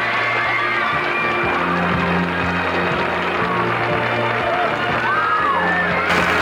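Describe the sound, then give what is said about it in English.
The studio audience of The Phil Donahue Show at WGN Studios in Chicago cheers and applauds loudly and steadily as Barbara Bach and Ringo Starr are welcomed, a dense wash of clapping with scattered whoops and shouts rising above it, with no speech over it. “Can you imagine attracting this kind of crowd?”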